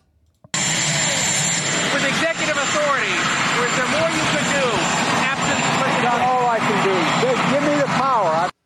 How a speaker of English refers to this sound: So that's a little hard to hear because of the helicopter in the background.